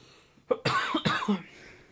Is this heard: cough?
yes